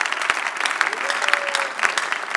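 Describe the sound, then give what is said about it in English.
A crowd claps their hands for the Lord steadily, dense overlapping handclaps forming a continuous wash of applause with a few sharper individual claps standing out, plus a faint sustained tone briefly in the middle. “Around 6, yes, you can clap your hands for the Lord.”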